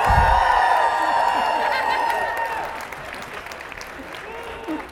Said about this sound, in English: How about a nice round of applause for both our debaters? Thank you very much.